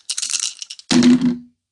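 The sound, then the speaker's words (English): Three dice rattle and clatter in a quick burst of small hard clicks, then a second louder tumble with a brief low rumbling roll as they settle, coming up a total of 3. No one speaks. “You roll 3 dice and get a frickin' 3.”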